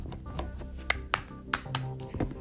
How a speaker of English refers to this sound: Shuffling the cards.